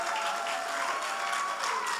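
A crowd claps together in a dense, steady wash of applause, many hands overlapping into continuous noise with no single beat standing out.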